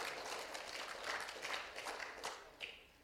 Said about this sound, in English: Hey, can we have an applause? Okay.